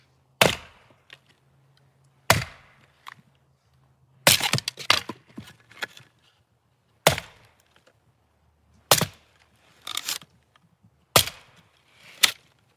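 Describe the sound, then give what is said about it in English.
Sharp, loud axe strikes split wood at irregular intervals of roughly two seconds, some blows followed by brief splintering cracks, with a faint low hum underneath and no voices. “I know that isn't you chopping that.”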